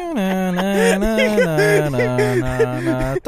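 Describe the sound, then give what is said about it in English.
A voice hums a steady, wavering tune in imitation of telephone hold music, while a caller is put on hold to wait for a manager. It holds long notes with a low drone that steps down partway through, with a faint melodic line above. “That's some weird hold music.”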